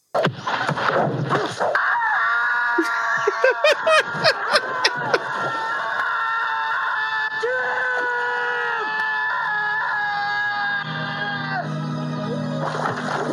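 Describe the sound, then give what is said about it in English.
A single long, drawn-out human scream from a film death scene holds loud and strained for about twelve seconds, wavering in pitch with brief breaks and rough bursts, with no talk over it. “I'm proud to say that scream was 12 seconds long.”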